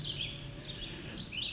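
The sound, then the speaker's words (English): A warbler sings a few quick, high, sweet phrases much like a yellow warbler's song, heard over a steady low rumble of background noise. “Their song can be fairly easily confused with a yellow warbler.”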